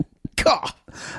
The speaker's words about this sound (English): Cough.